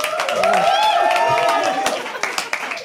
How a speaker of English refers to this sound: It was the first time ever that a comedian has clapped on the stage to get.